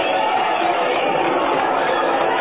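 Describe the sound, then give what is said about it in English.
A dense, steady roar of thousands of people lining the curbs and cheering at a street parade in Metropolis, many voices blending into one continuous wash of noise that stays loud throughout with no distinct words. “Look at all those people. Listen to them cheer.”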